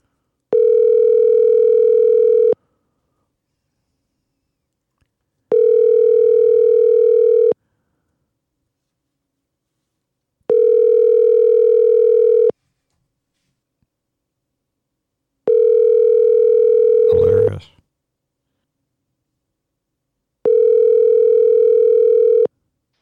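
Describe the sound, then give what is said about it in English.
A phone ringback tone of an outgoing call repeats five times, each steady electronic ring lasting a couple of seconds with even pauses between, loud and clear with no talking; a brief click interrupts the fourth ring. The call rings eight times in all before being answered. “8 rings. That's a record on Panic with Friends.”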